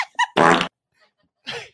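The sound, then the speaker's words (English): A loud, buzzy fart sound effect from a soundboard button blurts out for about a third of a second, with a couple of short squeaky bursts just before it and another brief raspy puff after a pause. “This is the best possible show to have the fart button on.”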